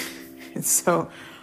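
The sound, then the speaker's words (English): A quick, sharp intake of breath, fairly loud, followed right away by a short voiced exclamation from the same person. “And it's very interesting because whenever I remind people to breathe when we're working with horses, I rarely hear someone going, "Well, I am breathing good."”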